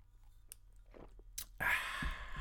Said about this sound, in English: A sip of tea, excuse me.